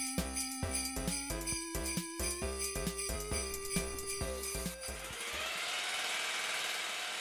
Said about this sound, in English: Sorry, just had to get some cement drilling done before the episode started.